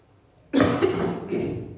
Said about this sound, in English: Excuse me for all the coughing.